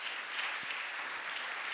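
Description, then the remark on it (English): A church audience claps together for a family in steady, dense applause that holds at an even level throughout, with no voices over it. “Should we give them a round of applause?”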